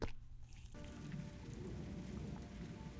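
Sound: rain falling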